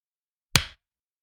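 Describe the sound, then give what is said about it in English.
A single sharp, loud clap from several hands striking together in unison as people start a recording, with a quick bright attack and a short fading tail, surrounded by silence and no talking. “Okay, we're supposed to clap.”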